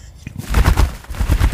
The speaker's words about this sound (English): It's still one of my favourite recordings. The birds are capercaillie. It's a bird of the highlands of Scotland.